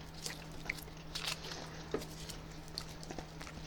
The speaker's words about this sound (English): I want to see how many sticks of gum I can fit in my mouth. Yeah. I got two. Go for it. In right now. So I'm going to go two more.